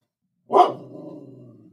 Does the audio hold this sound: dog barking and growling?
yes